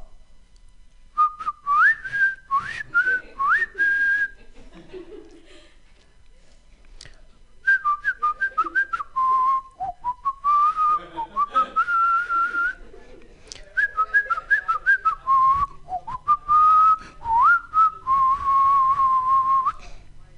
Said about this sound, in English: don't you think construction workers would have more luck with a whistle more melodic?